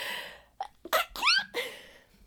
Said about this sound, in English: I'm going to sneeze first.